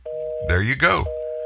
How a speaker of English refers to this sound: it's ringing busy if you're listening.